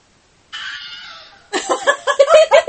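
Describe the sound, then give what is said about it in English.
The Wilhelm scream sound effect: a loud, strained, high-pitched cry held for about a second, then a harsher burst of rapid, wavering yelps. There is no talking. “So this is the Wilhelm scream.”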